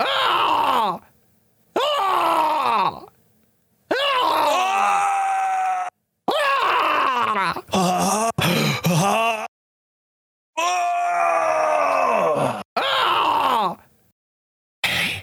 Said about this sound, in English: You'll know when the ad is over when you hear the 9 screams.